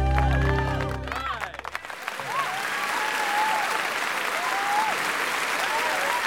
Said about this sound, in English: A roar of applause from the audience demonstrates an exciting end to this classic remake of the John Ford epic and another evening at the Playhouse.